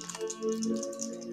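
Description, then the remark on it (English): Quiet, rapid clicking and clattering of physical dice tumbling across a tabletop, heard over a low steady background hum with no talking. “Okay, since, by the way, I'm rolling physical dice all the time.”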